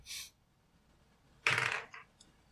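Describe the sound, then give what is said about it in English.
Dice rolled for an attack in a game clatter onto a hard tabletop: a brief rattle, a pause, then a louder tumbling roll that settles with a couple of small clicks, landing on a 7. No voices. “You can roll your attack.”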